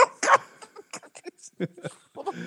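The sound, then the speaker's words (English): A big dog on a couch vocalizes in a rapid, irregular run of short bursts, whimpers, huffs and yips, fairly loud with brief gaps between them. “That's a big sounding dog you have next to you”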